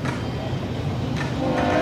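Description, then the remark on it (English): A container freight train, the fourth train of the day, rolls past during a baseball game with a steady, continuous rumble and clatter, its broad roar holding even throughout, with a faint murmur of voices in the background. “Eric Swan, third pitcher used by the Raiders today, as the fourth train of the day comes by, and a swing and a foul to the screen.”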